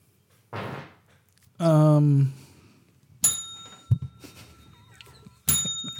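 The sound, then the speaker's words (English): A bell rings twice, each strike sharp and bright with a shimmering high tone that hangs on, the second coming about two seconds after the first. A voice sounds briefly just before. “that's a double. Double bell.”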